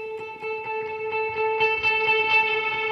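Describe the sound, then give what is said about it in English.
A sustained, reverb-drenched electric guitar drone with an eerie, effected tone, played through Mel 9 and Polymoon effects with no gain effects, pulsing in a steady rhythm and swelling slightly louder toward the end, with no voices. “Sounds a little more reverb soaked than normal right now, but.”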